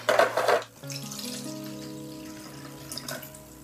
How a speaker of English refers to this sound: So, first off, I'm going to add some water to my diffuser.